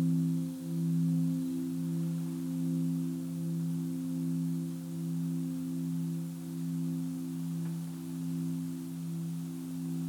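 A singing bowl hums during a meditation in a steady, low ringing drone that lasts throughout, its tone gently pulsing and wavering in slow beats. No one speaks.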